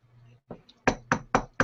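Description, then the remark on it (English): Four firm, loud knocks on a door in a steady rhythm, preceded by a softer tap and a faint low hum. “Is it the door? Do we have a door here still?”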